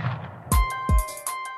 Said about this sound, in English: And then the final gunshot, there's actually two of them because we stop one in time. And this goes back to what you're saying, is how you can stop time with sound. The ultimate gunshot in the duel is actually we stop it. We arrest it and reverse it.